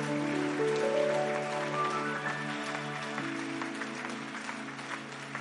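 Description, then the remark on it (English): An audience claps steadily and loudly as a clap offering, a dense continuous patter of many hands, with sustained organ-like tones and a rising melodic line playing underneath. “Increase that clap offering because it's bringing you a miracle.”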